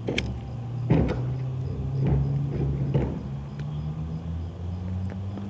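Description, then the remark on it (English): A tobacco pipe being lit with a lighter on a windy evening: a few sharp, scratchy flicks and soft puffing draws spaced about a second apart, over a steady low wind rumble, with no one talking. “This shouldn't happen with the first lighting of your lighter.”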